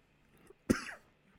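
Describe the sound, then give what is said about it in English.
A single sharp cough bursts out, loud and abrupt, with a brief raspy tail before quiet returns. “As you cough.”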